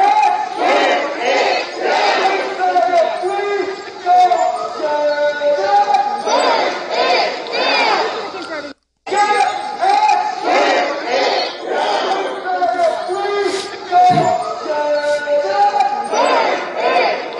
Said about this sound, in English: So this was Saturday night, folks, February 6th. I mean, you know, the marchers shouted pro-insurrection slogans